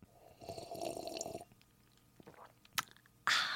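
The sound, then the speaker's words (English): Wet mouth sounds of someone sipping wine, a soft slurp and swallow, then a brief click and a louder breathy burst at the end. No one speaks. “Wait, let me take a sip of wine.”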